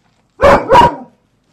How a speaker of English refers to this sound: Oh, doggy, doggy, you are quite noisy.